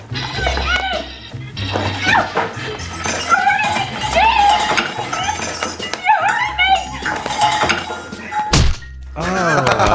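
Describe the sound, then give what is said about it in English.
A single heavy thud, a film sound effect like a phone book dropped flat onto a coffee table, lands sharply near the end, cutting through a busy, continuous background of voices and tonal sounds. “It sounds like we dropped the fucking phone booth on a coffee table.”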